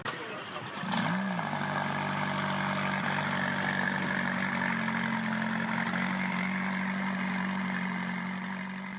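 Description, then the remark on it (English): The 562-horsepower 3.8-liter turbocharged V8 engine of a 2017 McLaren 570S sports car fires up with a short rising rev, then settles into a steady, loud idle that rumbles continuously until the end. “This is a 2017 McLaren 570S. 562 horsepower out of its 3.8-liter V8 turbocharged engine.”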